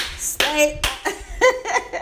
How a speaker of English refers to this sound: And that's me clapping. Let me give you the black girl clap.